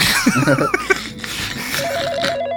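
A telephone rings with a rapid, warbling electronic trill that starts partway through and keeps going steadily, fairly loud, after a brief burst of fluttering tones at the start.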